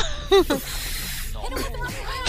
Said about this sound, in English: Cat fight, literally!